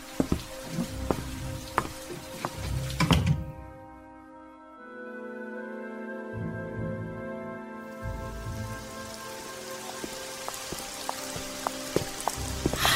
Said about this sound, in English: It's raining again. Why is it after September it just seems to rain all the time? You live in the Northwest.